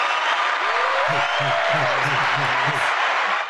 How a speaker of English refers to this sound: Where's applause. The applause? Where's the applause? Do the applause. Applause.